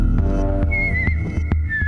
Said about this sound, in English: Oh, damn it! Damn it! It's that whistling farmer man again! Yeah, you just keep whistling, fella!